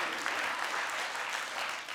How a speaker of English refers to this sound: And that's it. I was just hoping to get a round of applause. I wanted to feel good about myself.